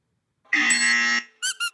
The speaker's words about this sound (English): Oh, I think the bell just got that.